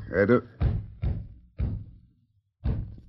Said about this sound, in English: What is that? Sound like someone trying to rap on the door. Mighty weak door rapping. I'll see if anyone's there.